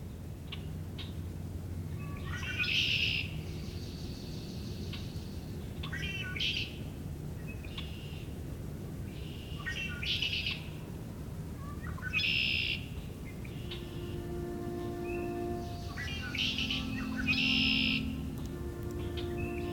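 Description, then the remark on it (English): A red-winged blackbird sings its buzzy, trilling song again and again, roughly every four seconds, over a steady low outdoor rumble with a few softer calls from other birds. “The red-winged blackbird is one of the most recognizable and abundant birds in North America.”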